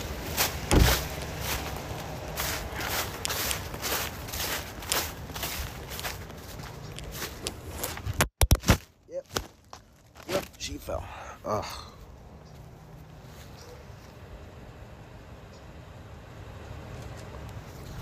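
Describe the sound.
A phone falls out of a fanny pack as the person bends over during a DoorDash delivery, landing with one sharp, loud bang partway through, followed by a few smaller clattering knocks. Rustling, shuffling handling noise and a talking voice come before and after it.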